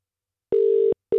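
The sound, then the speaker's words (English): A telephone ringing tone heard down the line as a radio cash register call phones a listener: steady, low electronic buzz-tones in short paired bursts with a brief pause between them, moderately loud with no voices. “That was just in the nick of time that it nearly went to the fifth ring.”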